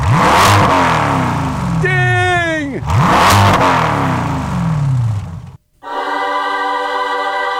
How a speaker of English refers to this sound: I don't think that you're going to get lost with that exhaust note.